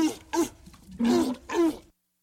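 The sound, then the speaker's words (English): Walrus vocalizations: four short, gruff bursts, each a throaty, breathy grunt with a low tonal core. They come at a moderate, uneven pace, loud, with no voices present. “Walrus number two. Selected. Walrus number two.”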